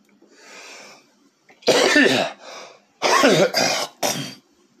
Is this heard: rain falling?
no